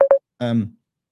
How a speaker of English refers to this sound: I have to kill this phone call.